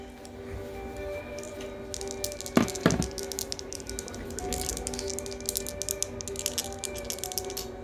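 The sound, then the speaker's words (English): Playing cards being shuffled, a rapid flurry of soft papery flicks and taps that rise and fall in quick bursts, with a faint steady hum underneath and no talking. “Do you want me to shuffle?”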